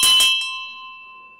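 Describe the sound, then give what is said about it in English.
A brass bell is struck once, giving a bright metallic clang at the start that settles into a clear, sustained ringing tone slowly fading away; no voices. “And here's brass. She also rang some bells for me.”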